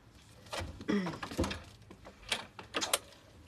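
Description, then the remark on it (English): A door is opened: a latch clicks, a short creak sounds, then a few knocks and clatters follow as it swings, with no voices. “Just open the door.”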